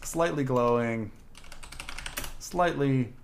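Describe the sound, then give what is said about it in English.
A quick burst of clicky computer-keyboard typing, moderately loud, lasting about a second, bracketed by short voiced vocal sounds just before and after. “Your keyboard speaks Slytherin.”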